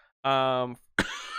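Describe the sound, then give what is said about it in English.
A deliberate cough: a sustained voiced throat sound followed by a brief pause and one sharp, loud burst, with breathy noise trailing after. “sorry, I cough when I lie.”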